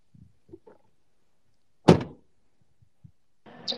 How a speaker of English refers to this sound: All right. Here's my car door right here.